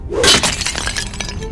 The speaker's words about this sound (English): It also shatters it into pieces.